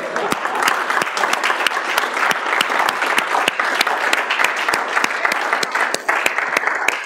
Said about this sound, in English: Don't we at least want to clap our hands for him?